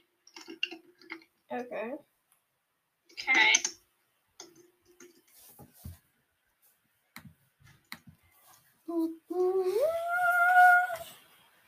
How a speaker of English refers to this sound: I'm just gonna type it in the chat to make sure I'm not making a big mistake.